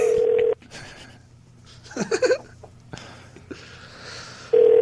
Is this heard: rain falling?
no